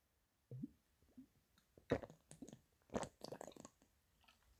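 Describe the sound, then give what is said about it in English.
Quiet mouth sounds of someone sipping and swallowing water in the evening: a few wet slurps and gulps with small clicks, coming in an irregular cluster with no talking. “So now I'm drinking water.”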